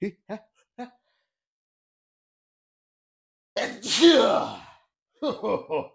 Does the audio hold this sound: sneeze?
yes